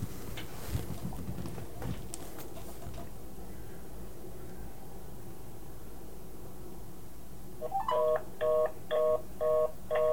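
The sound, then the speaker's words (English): After several seconds of rumbling static, a quick series of telephone keypad tones beeps out, about five distinct dual-tone presses in a steady rhythm, clear. “Let me see if I can just do that again.”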